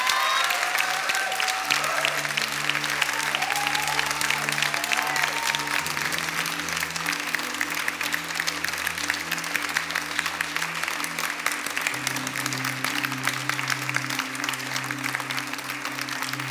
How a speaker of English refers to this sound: If there is anybody with me going forward, clap your hands and celebrate.